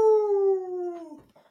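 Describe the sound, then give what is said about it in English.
A person does a single drawn-out wolf howl, a loud steady tone that sags slowly in pitch for about a second before breaking off, with no talking over it. “Okay, so we got two for Kaskuga and one lonely AIK. Jeez. Lone Wolf.”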